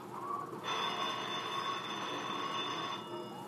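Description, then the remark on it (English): A telephone rings in a film scene in one continuous, bright metallic trill lasting a couple of seconds, fairly loud, over a soft background hiss with no voices. “Now he's hiding because the phone is ringing, which means someone will come answer it.”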